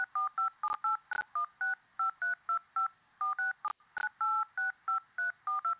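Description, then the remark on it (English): A quick, steady run of telephone keypad beeps as numbers are re-entered into an automated phone system, each short dual-pitched tone separated by brief gaps, with a couple of soft clicks in between and no one talking. “Please check the numbers again and re-enter.”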